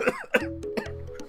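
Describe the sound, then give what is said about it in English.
A man coughs himself away: a run of about four harsh, raspy coughs in quick succession, with a low steady hum lingering underneath and no talking. “And then we hear … cough himself away.”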